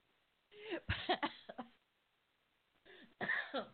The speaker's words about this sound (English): I should have known this would happen, and I just laugh until I cough.